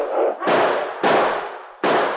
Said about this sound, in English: But suddenly, shots rang out.